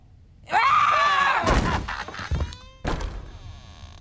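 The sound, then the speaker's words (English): A goat lets out one loud, harsh scream lasting about a second, followed by a few heavy thumps and clattering knocks. No one speaks. “I love a screaming goat.”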